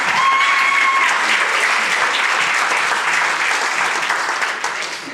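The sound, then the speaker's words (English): Sustained, loud applause from a crowd, a dense steady patter of many hands clapping that holds for about five seconds before easing slightly at the end, with a couple of brief whistles early on. “Everybody give David a big round of applause.”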